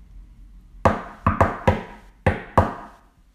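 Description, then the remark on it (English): Someone raps on a door six times in uneven clusters, each knock sharp and solid with a short ringing decay. The knocking is fairly loud, with no voices. “The pizzas were cooked and done in the oven and everyone was tucking into their delicious goodness when there was a knock at the door.”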